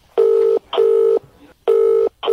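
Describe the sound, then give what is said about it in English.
A call placed from a mobile phone on speaker ringing out through the handset: loud, steady electronic tone bursts, each about half a second, repeating four times with short pauses, with no voices; the call goes unanswered. “I'm going to ring from your mobile.”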